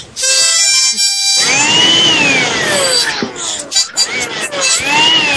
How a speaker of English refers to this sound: We can play Texas country. Yeah, we have a harmonica and a vacuum cleaner. Yeah, want to hear it?